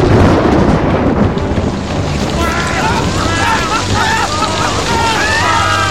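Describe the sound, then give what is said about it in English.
A heavy, steady roar of rain with deep rumbling thunder underneath, loud throughout, while faint wavering cries rise and fall in the background. “The rain. It's something in the rain.”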